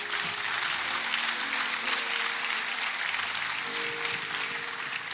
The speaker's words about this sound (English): Please, let's say a very big thank you. She's done so well. All right, if you're clapping, let's do it very well for Mr. Alder.